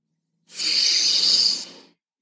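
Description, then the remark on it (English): A single steady, airy exhale through the nose during a breath-work exercise, clear, lasting about a second and a half before trailing off. No one speaks over it. “Blowing out through your nose.”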